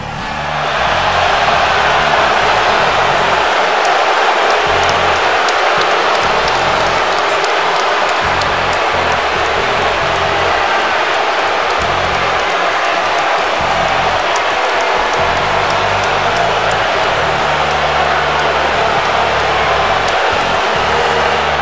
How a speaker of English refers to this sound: Listen to the roar of this crowd. No respect for Detlef Schrempf. Elias hit a sensitive button. Got Seattle right in the feelings.